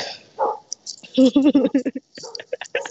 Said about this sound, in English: You're being barked at.